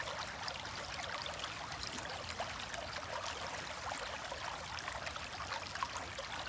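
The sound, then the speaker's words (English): A stream flows steadily past, a continuous bright rush of trickling water with no pauses, fairly quiet and even throughout, heard on its own without any voices. “The sound, the water moving by you.”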